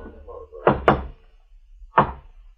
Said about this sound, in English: As we approached, I could see the outline of a door. We stopped in front of it, and the blind man knocked.